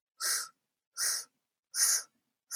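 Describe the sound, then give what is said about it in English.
Four short, sharp sniffing inhalations through the nose as part of a breathing exercise, in a steady rhythm, each a breathy hiss lasting under half a second with brief silent gaps between; no talking. “You're going to inhale in four sniffs through your mouth.”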